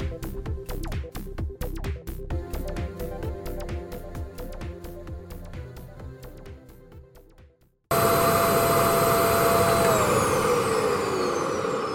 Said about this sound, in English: Wow, I haven't seen the carpet this clean since it was installed. What kind of vacuum is that? Holy shit, this vacuum fucking sucks! What? No, it doesn't. Look at that floor.